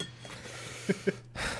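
Two quick, bright clinks of ice against a glass of ice water, about a fifth of a second apart, over a low steady hum, followed by a soft rustle.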